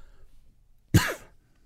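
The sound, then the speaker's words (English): A single sharp cough bursts out at the microphone, breathy and forceful, lasting about a quarter second against an otherwise quiet background. “Cough.”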